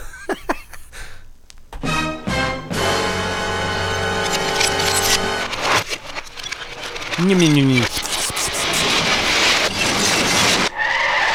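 A car crash sound effect: tires screech in a long, pitched squeal, then a loud, dense crunch of impact with scattered shattering glass that trails off.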